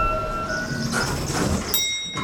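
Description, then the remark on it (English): An express train rumbles past, its steady roar mixed with high, shrill metallic squeals and tones that shift partway through, ending in a brief hissing burst. No one speaks. “Two express train.”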